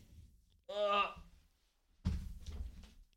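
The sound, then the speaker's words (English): A door is opened to let a dog outside: it creaks open with a drawn-out, squeaky groan, then after a short pause swings shut with a solid thud that rattles briefly. “The dog's getting up. We're gonna have to go open the door.”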